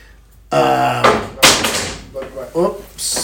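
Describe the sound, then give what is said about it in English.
A long wooden pool cue, knocked over by a cat, falls and clatters, giving a few sharp knocks and rattles over about three seconds, with a brief vocal sound mixed in. “I'm gonna say the cat just knocked over a pool stick.”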